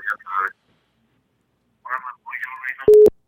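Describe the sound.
Voices speak briefly before a loud, steady phone busy tone cuts in at the end after the caller hangs up, a single clicking beep with the start of a second one.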